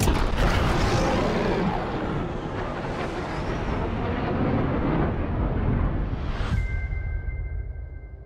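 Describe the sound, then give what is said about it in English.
A loud, roaring plane rushes past in a movie trailer, a heavy whooshing sweep that peaks near the end, then drops to a steady engine hum with a thin high whine. No one speaks. “Oh, a plane.”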